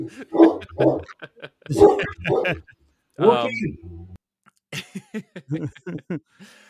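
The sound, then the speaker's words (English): Two dogs trade loud barks in quick bursts, a few yips mixed in, before the barking stops and people start talking. “Now our dogs are barking at each other.”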